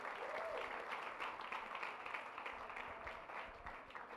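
A church audience at an Easter Sunday service breaks into steady applause, a dense wash of many hands clapping at an even, fairly loud level throughout, with a faint voice briefly audible beneath it.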